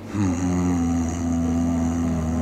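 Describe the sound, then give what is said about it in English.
A voice imitates a weird, low, bassy hum heard in a village that cannot be pinpointed, holding one steady, droning tone for about two seconds with a slight rise at the start, loud and unbroken. “It is a very, very weird, low, bassy, humming sound that's there.”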